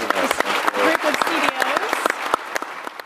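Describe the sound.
A crowd claps steadily at the close of the Nutanix .NEXT 2015 event, with dense overlapping hand claps, and a few voices murmur and call out faintly beneath the applause.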